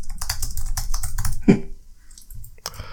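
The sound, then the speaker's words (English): A quick, irregular flurry of crisp, fairly loud computer mouse clicks as a quiz host brings up the answers, tapering off briefly before a few more clicks near the end; no one speaks. “So, Juan Aguidalo has, excuse my mouse clicking, everyone, 28 appearances for the US national team, scoring 3 goals.”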